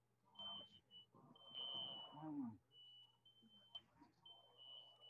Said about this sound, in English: With your fire alarm going off in the background?